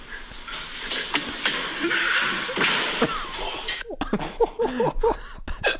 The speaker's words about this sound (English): It's you bouncing off the wall and then into the front door.